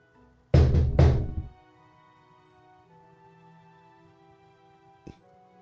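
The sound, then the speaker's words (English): Two loud, heavy knocks land close together on a hollow object sealed with duct tape, then after several seconds of quiet a single fainter knock answers against a low steady background hum. “I'm going to knock on it. You give it a rap tap tap?”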